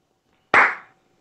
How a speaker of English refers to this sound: Well, let me go ahead and give the slow clap.